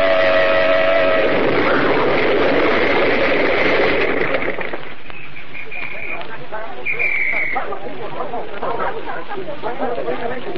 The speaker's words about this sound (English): But you're not supposed to blow your horn in the city, my dear. You know that. The Anti-Noise Committee says... I don't care what the Anti-Noise Committee says. Blow your horn and make that fellow get over.